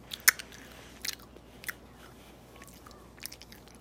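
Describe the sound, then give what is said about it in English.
Crunchy chewing of a blazing mango flavored candy straw, with a sharp bite near the start followed by a few scattered, softer crunches over a quiet, low hum. No one speaks. “Chew it up.”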